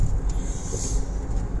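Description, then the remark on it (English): Steady low rumble of a car cabin while driving to work, a constant engine and road drone filling the low end with a faint hiss above, continuous throughout. “I am coming to you live and loud from the mobile car studio with today's episode.”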